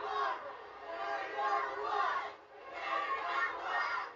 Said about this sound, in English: You hear the crowd chanting, Kerry is number one. Kerry is still number one in the hearts and minds of these Texas fans.